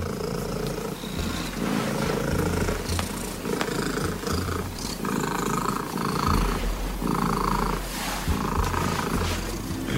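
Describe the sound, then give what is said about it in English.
A domestic cat purrs very loudly and continuously, a deep rumbling that pulses steadily in and out with each breath for the whole stretch, with no talking; the purr measures 54.49 decibels, a Guinness World Record for loudest purr. “here is Bella and her world record-holding purr”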